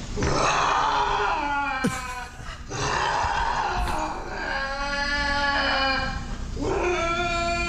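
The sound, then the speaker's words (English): A lynx screams in a man's kitchen, found there when he came home: loud, drawn-out, wavering yowls with a harsh, strained tone, repeated in several long bursts separated by short gaps and breaths. “So lynx scream kitchen.”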